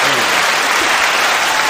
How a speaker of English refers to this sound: Now it's Soul Food Sunday. Ah, round of applause for Soul Food Sunday.